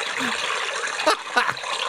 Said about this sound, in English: This is Brendan's LSD creek recording.